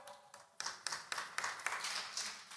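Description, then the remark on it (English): A crowd claps together in a steady, rhythmic beat, the claps fairly soft, with no talking over them. “You don't have to clap for that because some of you don't want the fire.”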